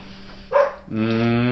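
A female dog lets out a single sharp bark, then a drawn-out, tonal whine-like bark that holds steady. It is fairly loud, with no one talking.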